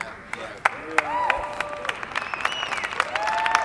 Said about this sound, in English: You know what the best part of that little statement was? That 87 people are clapping.